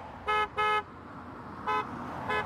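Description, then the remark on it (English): Car horns honk during a minor traffic snarl in Bloomington, Indiana, as a couple of drivers start honking: two loud toots in quick succession, then two fainter, shorter honks, over a steady low rumble of street noise. “And a couple of the drivers started honking.”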